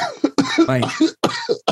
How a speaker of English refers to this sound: And as I cough, I listen to it.